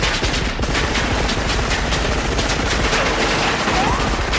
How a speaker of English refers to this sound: But I love John McClane's trying to get away from them. And there's some cool shooting and stuff there. When they introduce Carl's machine gun, it's loud as hell.